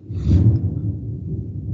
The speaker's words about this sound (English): Oh, are you having a thunderstorm? Oh, we're in a big thunderstorm. Yeah, I've been hitting mute on my microphone whenever I see lightning, because I know the thunder's coming right after.